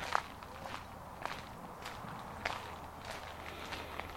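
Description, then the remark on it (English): Soft, steady footsteps of an unhurried walk along a river pathway, a series of light crunching steps at an even pace with a faint background hiss and no voices. “And begin a gentle walk.”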